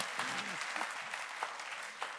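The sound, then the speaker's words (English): An audience claps together for the Holy Spirit in a dense, steady burst of applause, many hands overlapping into a continuous crackle, with faint voices murmuring beneath it. “I think we should clap for the Holy Spirit.”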